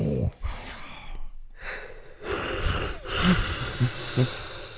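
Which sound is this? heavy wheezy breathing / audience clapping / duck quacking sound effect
heavy wheezy breathing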